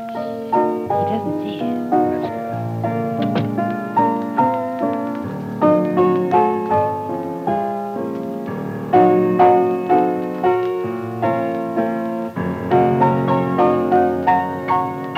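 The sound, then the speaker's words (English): A piano plays on its own, a steady flow of struck notes and chords ringing and decaying, moderately loud, with no voices over it. “I didn't know anybody was here, Gibbsy, or I wouldn't have mussed up your piano like this.”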